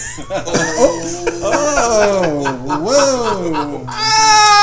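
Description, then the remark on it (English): A cat retches and heaves while throwing up, letting out a run of loud, strained, wavering yowls and gagging sounds that rise and fall over several seconds. “oh my kitty. Gosh. Fat fucker. You gonna be around that bitch. Just shit. Shit. Throwing up.”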